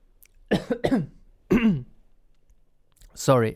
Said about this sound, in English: I'm not sick. I'm just coughing because sometimes you need to cough.